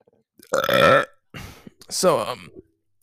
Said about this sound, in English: Excuse my burps, by the way. Those aren't supposed to be that bad.